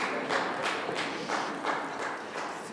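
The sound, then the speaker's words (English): One man claps in a steady, unhurried rhythm, about eight sharp claps at an even pace over a soft background hiss, with no voices. “I got one guy back here clapping, doing this for both.”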